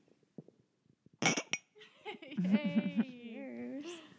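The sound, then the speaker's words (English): Beer glasses clink together in a quick, bright final toast, two or three sharp chimes, followed by voices breaking into a loud, sing-song chant of "Ole, ole." “One last cheers, how about? Yes, let's clink it.”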